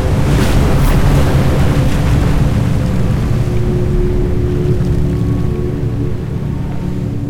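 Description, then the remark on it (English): A loud, steady wash of ocean water rushes continuously, like churning surf, with a low rumbling undertone and faint gusts of wind; no voices are heard. “Water poured from the glass like a tidal wave. The elephant monsters were washed away, and the flood turned the desert into an ocean.”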